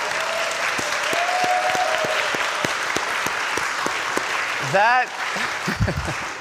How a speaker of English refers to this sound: That definitely deserves a round of applause.